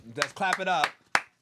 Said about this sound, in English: Clap it up. Very good.